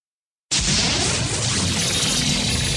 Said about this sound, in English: And those, like, little coins dropping, because, you know, the news is so valuable. Yes. People just drop coins left and right. Just throwing money left and right.